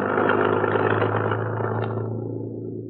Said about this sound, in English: That truck didn't care much whether it ran us down or not. Back of it was open, and